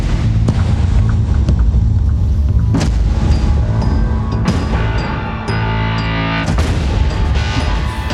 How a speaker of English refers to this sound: Let's hear what your trailer would sound like if it's nothing but sound effects. Oh, I'd be curious to know. Let's take out all the dialogue you're saying and the plot points.